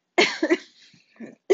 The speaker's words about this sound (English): Oh, I'm coughing. I'm sorry. I should probably do a little backstory. You guys, I'm getting over COVID. I got COVID.